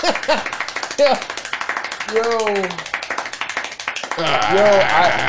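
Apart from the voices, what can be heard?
applause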